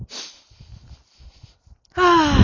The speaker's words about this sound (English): Just breathing in that. That good ass prana, baby. It's very, very nice.